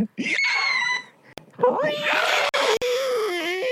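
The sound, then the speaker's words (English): A person lets out a loud, drawn-out screeching wail in two bursts, high and strained, with a brief gap between them. “Insert inaudible screeching.”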